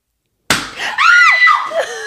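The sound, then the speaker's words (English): A single sharp balloon pop bursts out of silence, followed almost at once by a high, wavering shriek of surprise that rises and falls before trailing off. “I've never popped a balloon in my life.”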